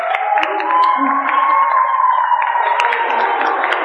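A steady wash of audience cheering and applause for the show's producer fills the whole stretch, with scattered sharp claps and whoops over a dense, sustained roar of many voices, loud and continuous.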